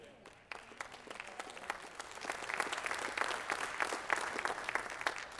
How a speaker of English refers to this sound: That's a weak applause, about 20%.